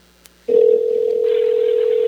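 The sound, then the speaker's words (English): After a short quiet moment and a faint click, a loud, steady electronic telephone tone starts and holds unbroken, like a line ringing on the other end, as a disconnected call is dialed back, with a slight hiss joining partway through. “You could actually hear the phone ringing.”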